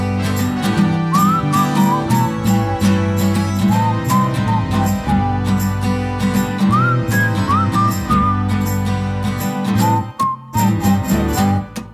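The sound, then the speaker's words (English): A bright whistled melody imitates a bird of paradise singing, rising and falling in short chirpy phrases over a busy, steady musical backing. “Bird of paradise is singing out his song.”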